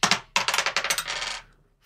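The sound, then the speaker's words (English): Dice clatter across a hard surface in a quick burst of bright, rattling clicks, tumbling rapidly for about a second before settling and going quiet. Fairly loud, with no voices. “roll the dice, man. Let's see what you land on.”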